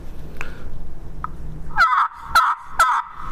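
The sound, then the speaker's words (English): A three-note turkey gobble blown on a call held blocked off flat, in three quick, loud, rattling bursts in the second half, following two faint chirps earlier. The notes are sharp, with no talking. “This is my three-note gobbler.”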